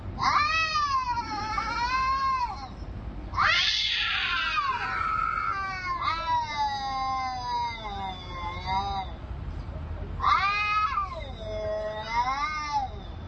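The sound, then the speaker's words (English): A cat yowls and caterwauls in long, wavering, drawn-out cries, loud, with a brief pause before the howling resumes. “Well, my cat's received Christ 3 times already. He's not handling the baptism part too well, but he can speak in tongues.”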